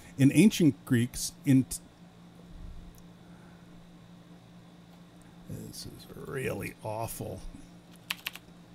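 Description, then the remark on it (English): Rapid clacking of computer keys, typed in a fast, steady flurry. Bursts of voice-like sound come at the start and again in the middle. “This is actually me typing horribly fast.”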